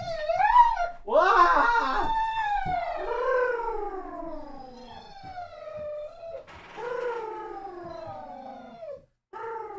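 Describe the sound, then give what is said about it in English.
A dog named Ruby whines and half-howls to be let out, excited after hearing someone come home, in a string of long, high-pitched cries that slide downward in pitch, breaking between calls, continuing fairly loudly for about ten seconds with no one talking. “She's whining. Hold on. I got to let the dogs out.”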